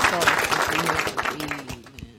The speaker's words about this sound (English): Let's give him a round of applause one more time.